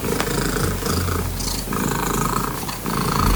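A loud domestic cat, a British family's 14-year-old cat, purring steadily and continuously, a rough rumbling drone with slight rhythmic pulses from breathing in and out, heard alone without voices; the purr was measured at 54.59 decibels, a Guinness World Record for loudest purr by a domestic cat.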